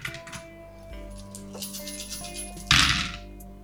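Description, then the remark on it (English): A player rolls all of their dice across a hard surface during a tabletop game: a quick spill of clicks, a quieter stretch of small rattles, then a louder burst of tumbling as they settle, showing two sixes. No one speaks. “Go ahead and roll again. All dice, all of your dice.”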